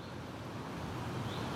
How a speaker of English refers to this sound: It's a wet and slightly windy morning on the outskirts of Bristol. We're about, I don't know, maybe 20-minute walk from our house. Oh, the rain's just coming down a little harder.